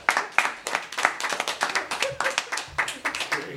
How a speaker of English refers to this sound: We're applauding your perseverance. All right, give it up for the Santa's elves, everybody.